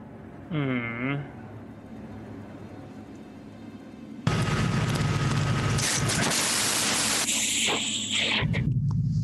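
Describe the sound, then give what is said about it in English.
After a brief pitched vocal sound, loud harsh microphone static bursts in abruptly and roars steadily for the last five seconds, a dense crackling hiss that drowns everything else. “Hold on, I'm getting crazy amounts of static from something.”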